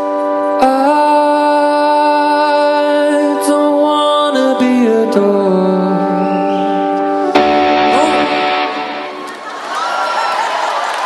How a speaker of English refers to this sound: That's an example of the clean-sounding organ coming through all that distortion there, showing you just how much it changes it.